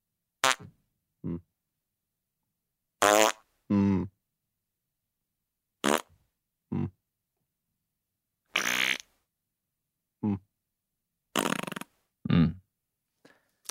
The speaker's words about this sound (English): What is that? That's a. That's four farts by my count. Was that four? Can we hear it again? It's five. They're five, but I can play it if you like.